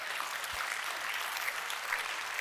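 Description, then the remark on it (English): An audience claps steadily, a dense wash of many hands with no pauses, even in loudness throughout, with no voices standing out. “Now you can clap.”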